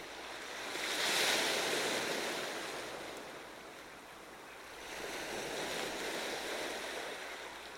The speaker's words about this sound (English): Listen to the pulse of the waves, the sea breeze, Listen.